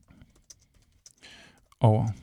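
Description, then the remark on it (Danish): Scattered light clicks of typing on a computer keyboard, a few quick keystrokes spread over a couple of seconds, followed by a brief louder burst of voice at the end. “Jeg skriver det.”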